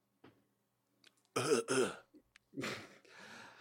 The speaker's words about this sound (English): Yeah, so I'm going to let you do that this time while I clear my throat for the news worth knowing. Let me clear my throat.